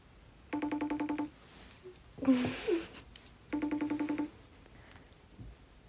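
A phone rings out twice in a call, each ring a short buzzy trill of rapid pulses, separated by a brief rustle, with no one answering yet and no talking.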